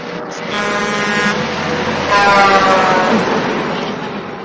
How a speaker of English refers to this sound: Sorry, it's just a truck drove by my house. I apologize.